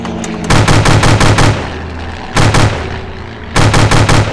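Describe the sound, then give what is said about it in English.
An aircraft machine gun, fired from an old plane at a pursuing aircraft attacking a convoy, fires three rapid bursts of sharp, loud cracks: a longer rattle, a short double shot, then another quick volley, all over a steady low engine drone. “Now grab that gun and keep whoever it is off my tail.”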